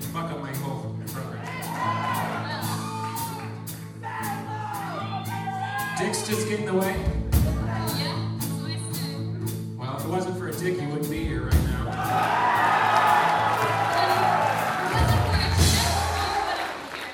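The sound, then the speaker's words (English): A large concert audience, the men in it loudest, roars and cheers continuously, a dense wall of shouting voices that swells louder toward the end, with whoops and yells rising out of the din. “The roar from the men in the audience was just way too loud for my liking.”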